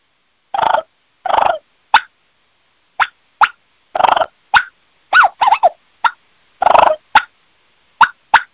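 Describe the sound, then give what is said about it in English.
A wild turkey hen gives a loose series of short, bubbly clucks (bubble clucks) mixed with brief rolling purrs, about a dozen notes in irregular rhythm, clear with quiet gaps and no talking. “So that's the bubble clucks, which is very similar to the way a Goulds, Rios, and Miriams clucks in general, as opposed to a more inquisitive cluck and purr, or even a more agitated cluck and purr”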